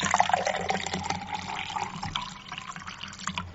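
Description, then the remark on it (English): Pomegranate San Pellegrino sparkling water pours steadily into a glass, a continuous splashing, fizzing rush lasting a few seconds that softens slightly toward the end, with no voices. “I poured myself a refreshing pomegranate San Pellegrino.”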